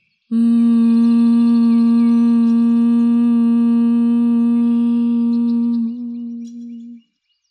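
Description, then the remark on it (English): A single long, steady nasal hum of bee breath on an exhale, held at one low-mid pitch with a buzzy, overtone-rich tone for about six seconds before tapering off. No talking. “Exhale, humming.”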